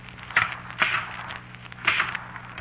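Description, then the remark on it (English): A typewriter clacks out a few keystrokes at an uneven pace, each strike a sharp mechanical snap over a faint steady hum, with no one speaking. “Look, I said I didn't write it, and the typewriter just said, no, I did.”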